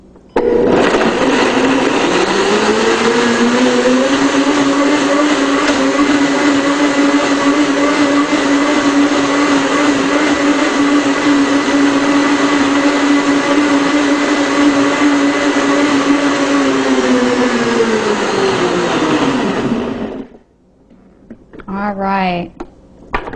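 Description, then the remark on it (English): A blender motor whirs steadily for about twenty seconds as it whips up a simple gravy made with onion and olive oil, its pitch rising as it spins up, holding a loud, even drone, then winding down before a voice briefly speaks. “So I'm going to go ahead and whip this up for you.”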